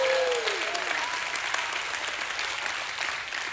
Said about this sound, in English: Somebody give God a hand clap and a shout of praise.